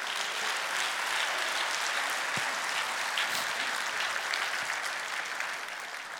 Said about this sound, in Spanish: Aplausos al Señor.